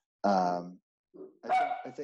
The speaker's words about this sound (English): Sorry, my dog's barking there.